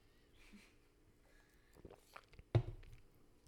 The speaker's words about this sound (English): All right, blood orange. We're going to try it. Cheers. It's also got some THC in it, actually. Oh, that tickles. That tickles my tongue. Oh, wait. Hold on, guys. My speech is going to be so much better when I sip this CBD soda. Hold up.